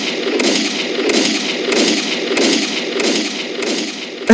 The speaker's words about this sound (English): I need some gunshots. Hold on. Where I need some gunshots after that shit.